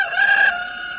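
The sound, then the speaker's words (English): A rooster crows once, fairly loud, a bright strained call that holds steady and then eases into a slightly softer drawn-out tail, with no talking. “Listen, I'm a rooster.”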